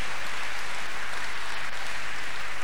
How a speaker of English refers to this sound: Let me hear you clap your hands again for the Lord.